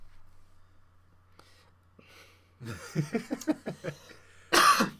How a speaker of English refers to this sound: Excuse me as I cough.